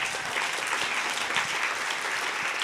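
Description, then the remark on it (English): An audience breaks into steady applause, a dense, sustained patter of many hands clapping at once, even in loudness throughout, with no voices standing out, applauding a guest author's book being on the Indie bestsellers list. “You can give that a round of applause.”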